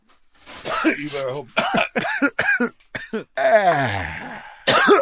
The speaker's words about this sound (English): I don't buy your cough story. I think you're infected.